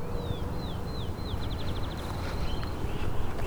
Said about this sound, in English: The space has a lot of field sparrows, so you will get to know the species if you're here, especially in the morning when they're singing quite heavily.